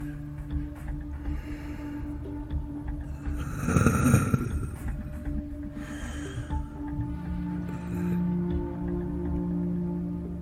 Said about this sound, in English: Looking as you carefully set everything in, close it shut, you hear the breathing on the other room.